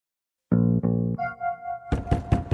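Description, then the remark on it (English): Several quick knocks rap on a door near the end, following two heavy, resonant thuds and a brief tonal hum after a moment of silence. “Door's open.”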